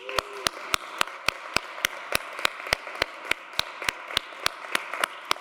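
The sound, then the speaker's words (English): A round of applause from a church crowd for the Missio Dei team: a soft wash of clapping with one loud, very steady clap cutting through, about four beats a second, with no one talking. “So if we could begin with giving them a round of applause.”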